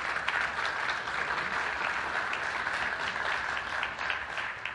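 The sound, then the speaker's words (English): Steady applause from a church audience clapping for members of a ministry trip team, a dense wash of many hands clapping at an even, sustained loudness for the whole stretch without any voices breaking through. “These guys, I want you to clap for them.”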